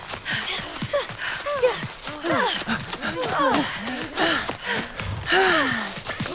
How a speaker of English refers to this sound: Was that goat techno? You should have heard what it was before, though.